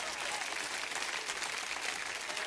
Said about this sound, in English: Somebody ought to give the Lord a clap offering and shout amen.